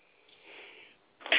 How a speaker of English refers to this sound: Excuse me for coughing. I really apologize, but I wanted to make that point.